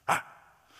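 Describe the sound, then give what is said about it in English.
A person's voice gives one sharp, loud bark in imitation of a dog, then fades into a quiet breathy tail. “if you're a grunter or a barker, I know people that actually like bark at other people.”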